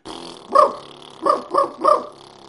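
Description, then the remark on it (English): Four bark-like yelps voiced through a didgeridoo over a steady low drone, one bark then a quick run of three, a traditional technique imitating a dingo, a wild dog of the outback, barking, loud with no talking. “Traditional sound, dingo barking, a wild dog in the outback, right?”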